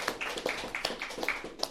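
A short burst of applause from a group, dense overlapping claps forming a steady, moderately quiet patter for under two seconds, with no voices over it.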